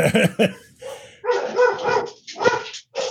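A dog gives two quick, sharp barks, then breaks into longer, drawn-out yelping barks that rise and fall in a few uneven bursts, with no one talking.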